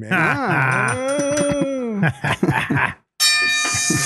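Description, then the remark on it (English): A voice moans and talks briefly, then after a short gap a big bell, nicknamed Kristen, rings out once, loud, its bright tone ringing on to the end. “Got the big bell on that one.”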